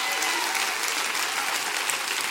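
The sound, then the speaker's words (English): An audience clapping their hands together in rejoicing, a dense, steady wash of many overlapping claps that stays loud and even throughout, with no talking on top. “Can we clap our hands and rejoice over the fact there's a stone growing every day?”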